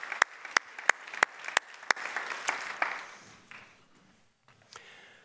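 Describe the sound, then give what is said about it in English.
An audience gives a thank-you hand clap, a steady, unison rhythm of sharp claps, then breaks into looser, scattered applause that quickly fades to quiet. “Can you guys give her a thank you hand clap?”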